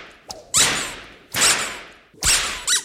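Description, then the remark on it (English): Three loud cracks of a man's whip land at a steady pace, each a sharp snap followed by a brief hissing swish, with short quiet gaps between them and no voices. “This man will pay dearly for laying his whip on royalty.”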